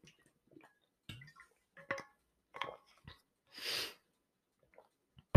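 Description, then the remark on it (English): Quiet sips of water with small wet clicks and gulping swallows, a breathy exhale in the middle, and a sharp knock at the very end. No one speaks. “Okay, another sip.”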